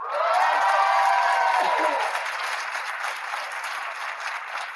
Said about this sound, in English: Please don't clap too loud. He's probably back there doing the most at this point.